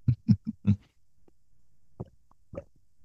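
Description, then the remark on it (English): Someone drinks water: four quick gulping swallows in a row, then a pause and a couple of softer gulps and mouth sounds, with no talking. “I'll drink water. Thank you.”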